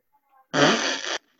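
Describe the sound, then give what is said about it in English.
A single loud, buzzy fart noise made with the mouth, a raspberry lasting under a second, standing alone with near silence around it. “Fart noise.”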